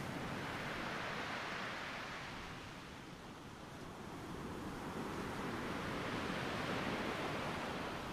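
Steady ocean surf rolls onto a beach, a broad continuous wash that dips slightly in the middle and swells again as another wave breaks, with no voices present.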